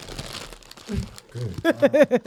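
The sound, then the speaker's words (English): Crisp crunching and crinkling of potato chips being chewed, with a person's voice rising briefly toward the end. “you got to chill with the chips.”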